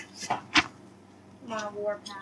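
A door creaks open onto a dusty spare bedroom with a drawn-out, wavering squeal after a short knock or clunk, moderately loud, the creak rising and falling over about a second.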